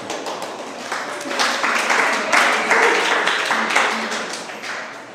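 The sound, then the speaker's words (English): An audience at Redeemer Community Church applauds as the associate pastor comes up, a dense wash of many hands clapping that builds through the middle and gradually eases off toward the end, with no clear talking over it. “We should do that a lot more at church. A lot more applause.”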